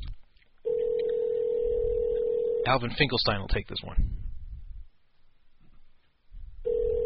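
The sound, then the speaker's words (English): A steady, continuous telephone tone hums on a phone line, cuts off while a voice speaks briefly, then resumes near the end, as an outgoing call to a woman rings. “So we'll see if she answers.”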